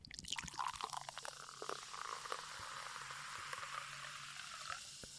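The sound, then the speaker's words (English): Mountain Dew Black Cherry soda is poured into a glass, a steady gurgling stream with fizzy, crackling bubbles that keep hissing after the pour settles, with no talking. “Yeah, do the sound pour. Here we go, sound pour.”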